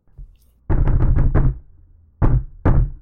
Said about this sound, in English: Another succession of loud poundings.